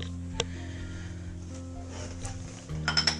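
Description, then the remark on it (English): Dishes and silverware clink while a dishwasher is loaded, with a few sharp metallic taps standing out over a steady low hum, the busiest clatter near the end. “You just keep loading things. And loading things.”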